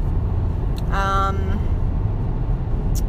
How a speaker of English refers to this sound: And oh, hold on a second, there looks like a car that's having a little bit of car trouble. You shouldn't be going. Oh, it's the muffler.